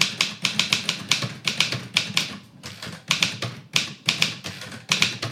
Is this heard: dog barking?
no